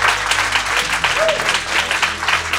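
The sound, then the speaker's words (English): A debate audience at Intelligence Squared applauds steadily, those who heard a thought-provoking argument from the other side, a dense, even patter of many hands clapping at once that holds at a fairly loud level without building or fading. “Can you applaud if you were a yes on that?”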